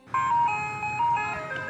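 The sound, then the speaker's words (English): A tinkly ice cream truck jingle plays a bright, steady melody of high electronic chime notes, looping at an even tempo over a faint low rumble, with no one speaking. “That iconic music screams summer. And we all scream for ice cream.”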